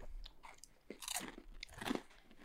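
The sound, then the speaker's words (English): Loud, crunchy chewing right on the mic, with wet, crackling bites repeating in an uneven rhythm over about two seconds and no talking. “This is now a show where people eat on mic.”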